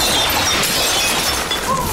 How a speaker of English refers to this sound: All that milk shatters all over their living room floor, and you can immediately start to see the blood running into the milk.